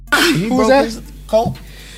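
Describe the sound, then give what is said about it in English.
One sudden, forceful sneeze bursts out, followed right away by a few short words from other voices. “Oh man, bless me now. Bless you.”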